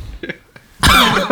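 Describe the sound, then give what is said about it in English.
A loud, harsh cough bursts in after a few faint throaty sounds, with a short rasping catch at the end. “That was my natural reaction. The cough.”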